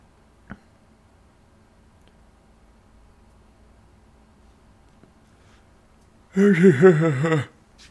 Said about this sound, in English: Oh no, I'll be yawning too.